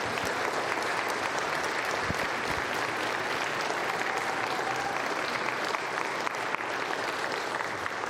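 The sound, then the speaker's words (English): A church audience claps steadily at Christmas for the children, a dense, even wash of many hands with no pauses or swells, and no voices rising above it. “And let's just give them one more round of applause.”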